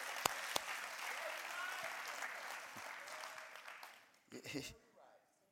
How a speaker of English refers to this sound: I like that so well, I clap my own hands.